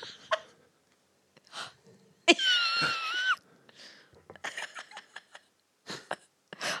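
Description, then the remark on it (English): A person imitates a shocked gasp: one sharp, strained, whistly intake of breath lasting about a second and fairly loud, surrounded by a few shorter breathy huffs and clicks. “Like I can't gasp like that.”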